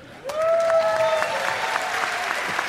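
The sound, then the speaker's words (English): An audience breaks into steady applause, the dense clapping holding at an even loudness throughout, with a sustained high-pitched cheer rising over it near the start. “A round of applause.”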